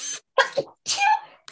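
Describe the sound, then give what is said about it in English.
A series of quick, high-pitched sneezes, three or four short bursts with brief gaps between them, squeaky and bright rather than deep. No one speaks. “Yes, people, that's really how I sneeze. I can't help it. Tinkerbell. It's a Tinkerbell sneeze.”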